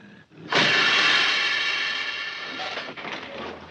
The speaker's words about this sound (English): But turns out to be a city bus, slamming on its brakes.